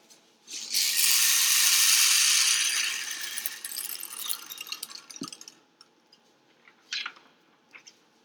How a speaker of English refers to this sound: Plastic Colorful Rain Stick.